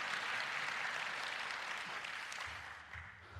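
A crowd claps steadily for their country during an independence celebration, a dense wash of many hands that holds at a fairly even level and eases off slightly near the end, with no voices heard.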